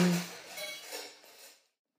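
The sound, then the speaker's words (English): A single metallic clink of cutlery opens, followed by a soft, scratchy rubbing as the pieces are polished during downtime to get ready for the evening service, quiet, fading out after a second and a half. “Polishing cutlery in our downtime, getting ready for this evening's service.”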